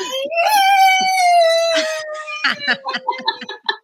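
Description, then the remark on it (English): A long, drawn-out yowl from a female cat being retrieved from under a bed, with a wavering, slowly falling pitch, holds for about two seconds, followed by choppy bursts of talking. “It's the cat.”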